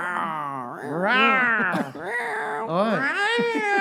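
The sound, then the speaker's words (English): A person imitates an alley cat, producing a run of drawn-out, wavering meows and yowls that rise and fall continuously. The voice is loud, with a brief spoken word mixed in. “I'm an alley cat.”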